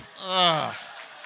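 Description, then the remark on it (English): A crowd lets out a drawn, falling groan lasting about half a second, followed by a fainter, diffuse patter of applause. “Groans and applause.”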